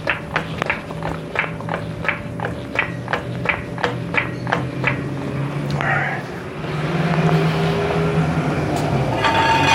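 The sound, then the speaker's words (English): A hydraulic car jack cranks up with a steady series of sharp, evenly spaced metallic clicks for several seconds, lifting a car so the jack stands can be removed, before giving way to a louder, rougher mechanical rumble. “Jack is lifting the car now.”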